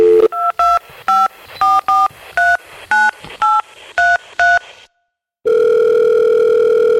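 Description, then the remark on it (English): A quick run of about ten touch-tone beeps as a Texas-based phone number from the Cicada 3301 puzzle is dialed, each short dual-pitched tone evenly spaced, followed by a brief pause and then a steady, continuous tone. “The phone number no longer exists, but it was based in Texas, and when he called”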